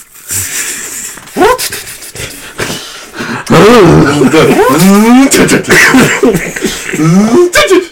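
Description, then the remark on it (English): A person imitates a revving car engine with their voice: a few throaty bursts first, then a long, loud stretch of rising and falling growls like an engine being revved through gears. “Give me a good car sound”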